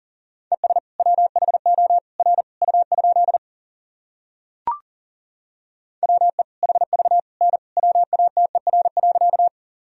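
Rapid Morse code beeps at 40 wpm in a single steady mid-pitched tone, sending sentences made from the top 100 words and abbreviations, in two fast bursts of short and long pulses, separated by a pause with one brief click. No voices.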